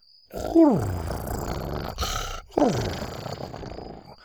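A large creature, Buck, purrs happily with a deep, steady rumble while rubbing his head against a leg, broken by two loud, groaning calls that slide downward in pitch, one near the start and another about two seconds later, with no talking.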